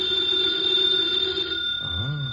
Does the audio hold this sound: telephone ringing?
yes